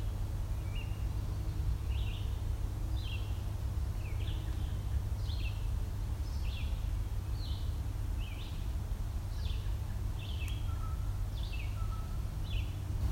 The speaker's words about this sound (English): That's a blue jay making a weird call. It's making a bit of a weird call, but they do that.